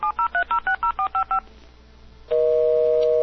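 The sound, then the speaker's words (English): A phone call being dialed: eight quick touch-tone beeps in a steady rhythm, a brief hush, then a loud, steady ringing tone starts and holds. No one speaks. “It seems like a ringing.”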